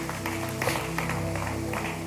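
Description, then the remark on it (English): A church audience claps its hands to give God praise, a steady, dense patter of many overlapping claps sustained throughout, with a low hum underneath and no voices standing out. “Can we clap our hands and give God praise?”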